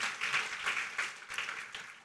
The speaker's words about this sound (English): If you want to clap, let's do a good one.